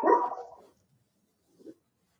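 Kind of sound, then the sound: animal, poodle barking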